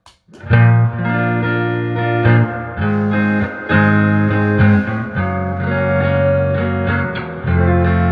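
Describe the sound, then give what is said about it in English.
Clean electric guitar chords ring out steadily through Tone Master and Stage amplifiers heard together, each strum sustaining with a wash of reverb, at an even, moderate loudness with no voices. “They almost sound identical other than the reverbs. Roll the reverb back a little bit on Tone Master.”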